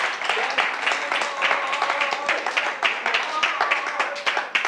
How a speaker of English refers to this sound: And everyone said, in Jesus' name, clap your hands because God heard you.